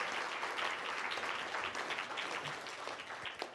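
A large crowd claps steadily in praise of the Lord, a dense, continuous wash of applause filling the whole stretch at an even, fairly loud level, with no voices breaking through.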